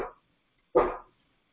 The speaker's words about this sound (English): Sorry again about my dog.